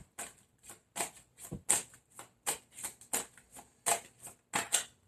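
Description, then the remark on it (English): Tarot cards are shuffled and drawn for a Sagittarius reading, a steady run of about a dozen crisp, papery slaps and riffles in quick, slightly uneven rhythm, with no talking. “May I have 3 more cards for Sagittarius, please?”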